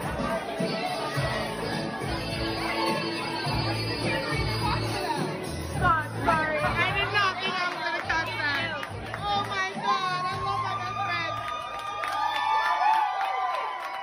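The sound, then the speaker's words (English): A loud crowd cheers and shouts over a steady low rumble, with many overlapping voices, rising whoops and excited calls filling the whole stretch without a pause. “Not only that, everybody's cheering him on because it's that thing of we have to celebrate gayness.”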